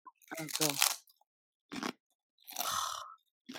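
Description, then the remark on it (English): Loud crunching of white corn tortilla chips with a hint of lime, in a few separate bursts, with a short vocal hum near the start and quiet gaps between bites. “White corn tortilla chips with, like, I think there's, like, a hint of lime on them.”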